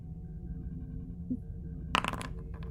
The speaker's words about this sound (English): And yeah, so base torpedoes is 5, and you spent 2 momentum, so you're rolling 7 challenge dice of damage.